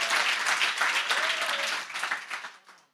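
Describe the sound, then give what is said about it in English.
A large crowd claps steadily in a dense, sustained wave of applause after hearing that over 1.2 million euros came to a building fund in 12 months, with a faint voice or cheer rising briefly in the middle, before the clapping thins out and fades away. “Oh, you should be clapping like God is a miracle worker.”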